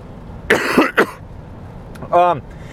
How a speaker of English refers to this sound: I do apologize for this cough.